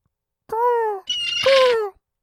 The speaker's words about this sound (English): A few of the seagulls flew from the roofs up along the harbor edge.